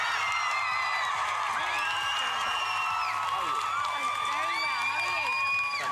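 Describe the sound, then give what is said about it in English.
A crowd of girls screams and cheers continuously, with shrill, high-pitched shrieks and whoops swooping up and down over a dense roar of voices, loud and unbroken throughout. “he's now back and he's making the girls scream more than ever.”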